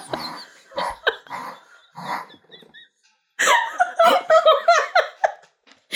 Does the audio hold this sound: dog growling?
yes